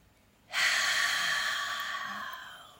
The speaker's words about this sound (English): So let's close our eyes. And let's take a nice, long, slow, deep breath in. Breathing in that peace and love and light.